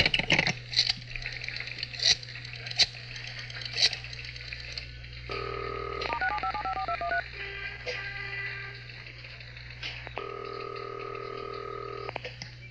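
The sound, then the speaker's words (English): A police detective dials a telephone number: a steady tone, then a quick run of touch-tone beeps, and later another sustained tone, all over a low constant hum and faint clicks, with no voices. “Now, where did I put that number in there? What's up, Will? Maybe onto something. Get on the other phone.”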